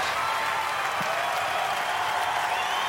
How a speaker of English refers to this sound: cops are clapping.